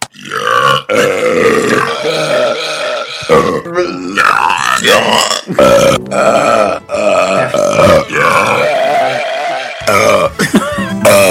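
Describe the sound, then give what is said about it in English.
A string of long, loud, croaking belches, one rolling into the next with only brief pauses between them, played back from a recording on a disc. “Here's the disc of belches and the soy sauce.”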